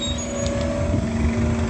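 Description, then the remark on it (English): An Omnitrans city bus on Route 61, bus number 1363, approaches on a street at 7:49 a.m., its engine droning steadily: a low rumbling hum with a faint whine on top, holding at an even loudness with no voices. “the company who's approaching right now, Omnitrans. This is Route 61.”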